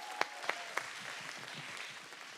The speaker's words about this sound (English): y'all give her a great big round of applause